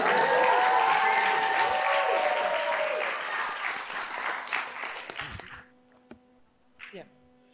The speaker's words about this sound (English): we're looking at about 150 people, and they're all just going to say hi to you and clap so you can hear that we are actually in front of a crowd.